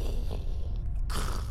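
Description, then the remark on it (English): A continuous low rumble with a heavy, grinding texture, steady and loud for over a second, swelling into a brighter crackling roar near the end like structure shaking. “The place rumbles again.”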